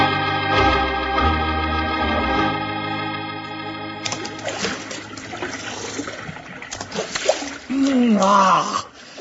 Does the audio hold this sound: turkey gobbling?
no